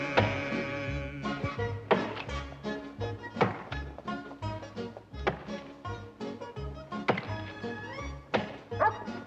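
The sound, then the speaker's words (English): Heavy, regular thunks of an axe striking wood, roughly one blow every second, ringing out over a full orchestral music track. “A dozen men in here, bellowing for victuals, and you out chopping wood.”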